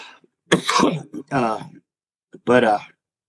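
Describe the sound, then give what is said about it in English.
A person coughs and clears their throat, three harsh bursts over a few seconds, the first rough and noisy, the later ones more voiced and gravelly, with brief pauses between. “I mean, he's dude, I don't know why I'm coughing for.”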